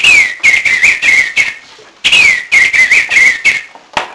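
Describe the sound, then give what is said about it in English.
A person whistles an imitation of blackbird song: two bright, high phrases, each opening with a sliding note followed by a run of quick warbling chirps, then a short final tweet. “Now we have the blackbird.”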